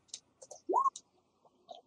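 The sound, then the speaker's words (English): Four fate dice tumble across a table in a scattered run of quiet, sharp clicks and taps, with a brief rising squeak partway through; no one speaks. “So you can roll four fate dice.”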